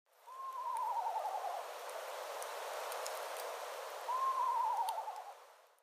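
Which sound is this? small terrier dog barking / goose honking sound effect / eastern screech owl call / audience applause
eastern screech owl call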